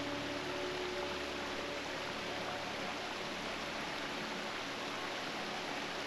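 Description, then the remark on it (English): A steady, dense roar of rushing water from waterfalls in Switzerland fills the whole clip without pause, loud, with no voices. “Swiss Waterfalls”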